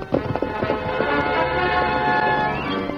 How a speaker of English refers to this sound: The Lone Ranger's big white stallion led the way in a wide sweep around the town of Crippled Creek. Dan Reed rode close behind.